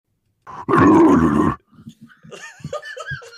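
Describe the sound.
A person lets out a loud, rough growl lasting about a second, followed by quieter, broken vocal grumbles and squeaky murmurs.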